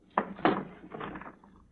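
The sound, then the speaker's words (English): A drawer is pulled open to get orders out of it: two quick wooden knocks followed by a short scraping slide, moderately loud and with no one talking. “I put them in that drawer. I'll get them.”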